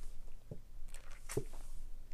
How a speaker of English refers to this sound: Let me take a sip of that.